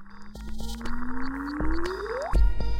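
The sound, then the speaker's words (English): A sonified supermassive black hole collision: a low tone glides slowly upward, then shoots sharply higher into a quick chirpy whoop, set over a humming, echoey tonal background with scattered clicks. “There's something undeniably musical in that chirpy whoop.”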